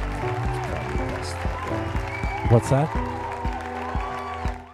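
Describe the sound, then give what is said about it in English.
A loud, dense wash of crowd noise with steady applause fills the whole stretch, with a brief swell midway and a voice speaking over it. “Okay, the crowd noise is too much, yo.”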